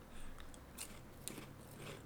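Crunchy chewing of a dry snack, with irregular crisp bites and crackles spread over a couple of seconds, quiet with no talking.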